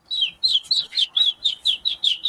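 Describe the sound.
A person whistles an imitation of a bird's tweet: about ten quick, high chirps in a steady, even rhythm, fairly loud, with no talking.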